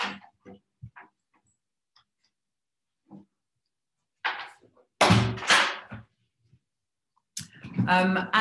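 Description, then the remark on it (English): Several loud, heavy thuds land in quick bursts as someone bangs on a door, with quieter clicks and brief voice sounds in between. “Excuse me for a minute, I've just got someone banging on the door.”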